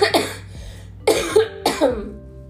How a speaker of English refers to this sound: Since I'm recovering from a respiratory ass virus and it's finally clearing up, but still have trouble breathing and with this cough. When I walk for long periods of time, I will cough like I'm coughing and dying.